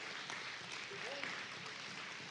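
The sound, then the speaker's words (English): A church audience gives a big hand clap of praise in a steady, dense wash of clapping that holds at an even level throughout, with faint voices calling out beneath it. “Let's give him a big hand clap of praise here today.”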